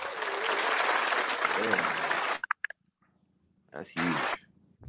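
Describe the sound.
Dense, loud hand clapping like applause fills the first couple of seconds, ending in a few sharp separate claps, followed by silence and a brief burst of voices.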